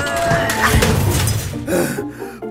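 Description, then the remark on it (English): A loud, jumbled crash of metal junk, including 3 tons of aluminum, being dumped into a car trunk, with overlapping clanks and rattles that surge twice before cutting off abruptly. “Guy Raz, help me dump all this junk in the trunk.”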